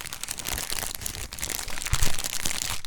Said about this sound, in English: Did everybody bring their chips to eat? Like start crunching?